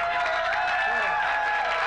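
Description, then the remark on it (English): An audience boos and claps at once in reaction to an edgy joke, a dense, steady wash of applause mixed with low crowd voices that holds at an even loudness throughout. “Ooh, we're getting boos and claps, he's being edgy.”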